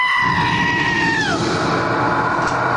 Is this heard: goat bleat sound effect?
yes